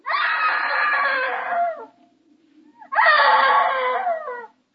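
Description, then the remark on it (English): A woman screams twice, loud, each shrill cry lasting nearly two seconds, separated by a brief pause with only a low background hum. “Hey, screaming woman.”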